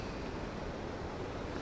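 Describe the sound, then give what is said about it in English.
A steady, continuous rush of flowing river water on a chilly day, a dense, even hiss with no breaks or distinct splashes, heard on its own without voices. “We've got the river in the background.”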